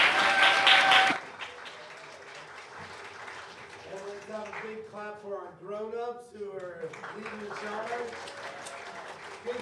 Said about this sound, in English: You guys remembered all of them. That was outstanding. Let's have one more big clap for our kids.